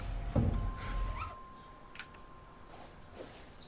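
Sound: door creaking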